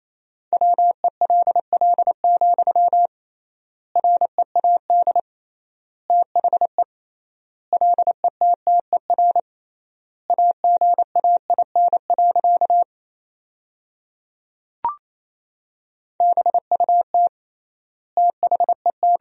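Rapid Morse code at 28 words per minute with triple word spacing, sending sentences built from the top 300 words: a steady mid-pitched tone keyed into quick dots and dashes, sent in word-length bursts separated by pauses, with a single sharp click partway through.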